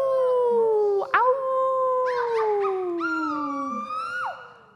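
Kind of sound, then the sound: animal, wolf howling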